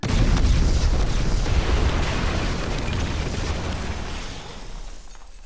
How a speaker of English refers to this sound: I'll add an explosion sound effect in later.